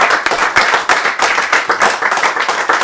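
A steady round of applause from a crowd, many hands clapping at once in a dense, continuous patter that holds at a fairly loud level for a few seconds.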